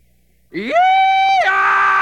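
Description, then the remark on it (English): A man's voice lets out an imitation of a rebel yell: a loud, piercing cry that swoops up to a high sustained note, then drops into a harsher, lower holler, alone without talk. “But I personally, having done a little research on the subject, I believe that the rebel yell went like this.”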